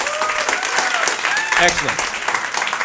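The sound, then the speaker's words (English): A live audience applauds steadily, dense clapping filling the whole stretch, with faint voices and whoops rising through the noise, clapping to show they have played or are familiar with role-playing games. “So by applause, can you applaud if you have played or are familiar with role-playing games?”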